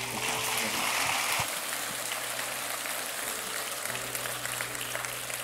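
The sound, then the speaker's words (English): A crowd applauds steadily, a dense, continuous wash of clapping that stays fairly even in loudness throughout, with a low hum running underneath. “Give them a big round of applause real quick.”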